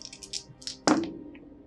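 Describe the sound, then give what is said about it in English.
An action die and challenge dice are rolled in a game. They rattle in a few quick, bright clicks, then land with one sharp clack that rings briefly, followed by a single faint tick as they settle. No one speaks. “So we're rolling plus shadow, plus one.”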